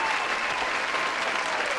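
Steady applause from a crowd, a dense wash of many hands clapping at an even, sustained level with no single claps standing out and no voices over it.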